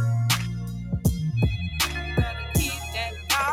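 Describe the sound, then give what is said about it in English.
A phone rings with an incoming call, playing a musical ringtone: a steady, beat-driven tune with punchy bass thumps and bright melodic tones, loud, with no one talking. “Wait a minute. You calling my phone?”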